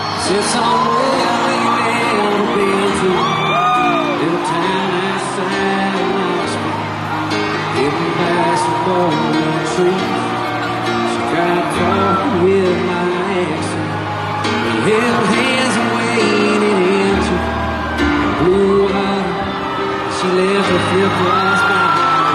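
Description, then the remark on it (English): A loud concert crowd in Philadelphia erupts in sustained cheering, whooping and yelling as a special guest walks out during a cover song, with scattered high shouts rising above a dense roar that stays intense and unbroken throughout. “and the crowd loses their mind.”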